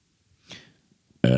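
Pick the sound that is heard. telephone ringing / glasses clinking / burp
burp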